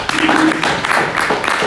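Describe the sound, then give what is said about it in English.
A crowd breaks into a round of applause for an anonymous listener, a steady dense wash of clapping that stays loud throughout, with a few voices faintly mixed in. “Rabbi, if we could get a round of applause to the anonymous listener that listens every day to the shiurim and he's out there battling.”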